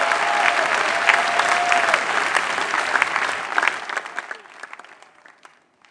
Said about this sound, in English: Can I hear some clap of you here?